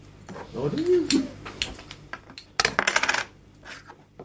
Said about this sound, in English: Now I believe we count our chips. I mean coins. I drop one.